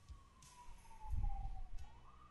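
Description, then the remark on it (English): An emergency siren wails outside in Crown Heights, its tone slowly sliding down and then rising again, with low rumbling traffic noise underneath and no one speaking. “I hear sirens.”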